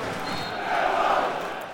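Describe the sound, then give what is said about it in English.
A large football stadium crowd roars in a dense, continuous wall of noise, swelling louder midway through before easing slightly. The fans are cheering a close-range goal for a 1-0 lead three minutes into the game, after a howler by the Blackburn goalkeeper. “That's got the crowd on their feet.”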